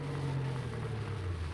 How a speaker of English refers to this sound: Tonight's file opens at a gas station located on a desolate stretch of highway in a western state. It is early evening. A car approaches and pulls into the station.